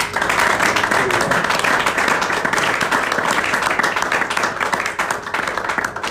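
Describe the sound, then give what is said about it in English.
Sustained applause from a large crowd at a Christian worship service, given as a clap offering to Jesus, fills the space: dense and steady clapping that stays loud and even throughout, with a faint murmur of voices mixed beneath it. “Let's give Jesus a mighty clap offering.”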